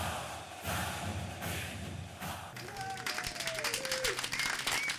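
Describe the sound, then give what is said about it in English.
Steady crowd applause, a dense wash of many hands clapping, growing more textured and crackly toward the end, with a few faint whistles rising above the noise. “The crowd's still here.”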